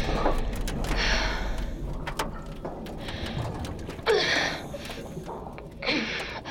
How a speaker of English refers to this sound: You're breathing. I'm moving up.